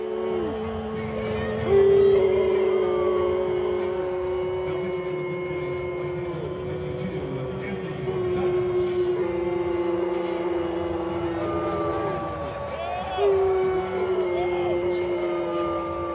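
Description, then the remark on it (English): A big baseball stadium crowd of Milwaukee Brewers fans boos steadily at a pitcher sent out to the mound, drawn-out low jeers rising and falling in waves over a constant roar. The sound stays loud and continuous, swelling at a few moments. “So last night he was sent out to the mound, and it didn't go over all that well with fans.”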